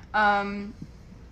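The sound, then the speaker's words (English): A single loud burp, drawn out for about half a second with a steady low tone before stopping abruptly, followed by a faint soft thump. “You guys, that's gonna sound so weird because it literally just cuts off after I burp and we lose our shit and now we're talking again.”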